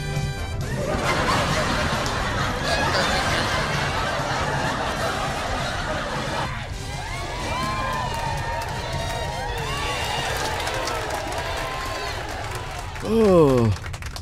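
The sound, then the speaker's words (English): A crowd applauds steadily for about fourteen seconds to welcome the show Inside Joe, mixed with cheering and laughter, and a short, louder whistle-like sweep rises and falls near the end. “Everybody give up a round of applause.”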